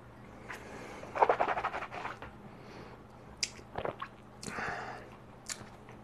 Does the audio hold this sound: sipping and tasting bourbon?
yes